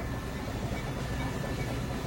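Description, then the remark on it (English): A red and silver train engine rumbles steadily along the rails, a continuous low, heavy roar with faint rhythmic clatter, fairly loud throughout with no voices. “The red and silver engine is noisy, big and strong. And faster, faster, faster, it is pulling us along.”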